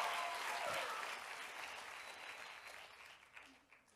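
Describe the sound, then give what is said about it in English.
An audience gives a big hand clap for a man who is still healing and has just run, a dense wash of hand claps, loud at first and slowly tapering off over a few seconds, with a few scattered claps lingering near the end. “Y'all give him one more big hand clap”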